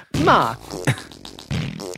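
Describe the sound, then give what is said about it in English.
A few loud fart noises with wobbly, buzzing pitch, likely made by a voice imitating flatulence, coming in short blasts separated by brief gaps. “Fart.”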